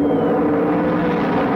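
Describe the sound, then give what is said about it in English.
A loud, dense roar of many stock car engines at full throttle as the race field comes out of the fog past turn 9 at the start of a race, with the flag about to drop, holding steady throughout the short stretch with no voices over it. “Field coming down, and I think Pete Keller is going to be dropping a flag very shortly.”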